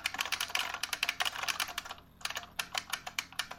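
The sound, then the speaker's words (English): Rapid, steady clicking of keys on a computer keyboard, fairly quiet, with a brief pause midway before the typing resumes in quick bursts, as someone types a paper. “I'm just typing your paper for you.”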